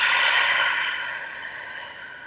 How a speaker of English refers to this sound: Take a deep breath again. And close your eyes. You're absolutely safe. One more deep breath.